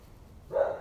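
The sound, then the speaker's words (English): A single short dog bark sounds out after a brief quiet stretch, moderately loud, with no talking. “My dog's also pissed off.”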